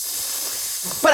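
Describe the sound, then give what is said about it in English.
A voice imitates a hissing apartment radiator with a steady, breathy sss held for about a second, then breaks into a brief voiced sound at the end. “So like sometimes it's the radiator, and other time you're like, what's that hissing?”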